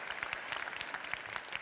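An audience applauds, a dense patter of many hands clapping at steady volume for a short burst, with no voices standing out.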